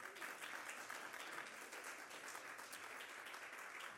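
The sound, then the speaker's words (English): An audience applauds their new senior minister, a dense wash of many hands clapping at once, sustained at an even, fairly loud level throughout with no voices standing out. “You guys give him a hand clap?”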